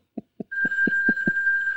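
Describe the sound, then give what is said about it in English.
A telephone starts ringing with a steady, high bright tone partway in, over a series of six evenly spaced, dull low thumps that began just before it. No one speaks. “She's so mad at that phone.”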